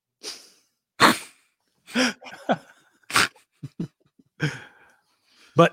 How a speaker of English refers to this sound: Bless you.